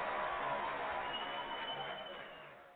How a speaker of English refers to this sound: Big applause. Sports Huddle gets an applause.